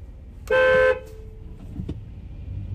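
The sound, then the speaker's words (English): A single loud car horn blast, honked at people waiting at a green light, lasts under half a second over low, steady road and engine rumble, followed by quieter traffic noise. “Sorry, I had to honk at these people because they were fucking finger popping each other's assholes at the fucking green light.”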